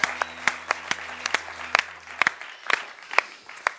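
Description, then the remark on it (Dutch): Audience applause for a band on Christmas Day, with sharp individual claps standing out over a steady patter of many hands, moderately loud, with a low hum underneath. “Laten we de band ook een applaus geven.”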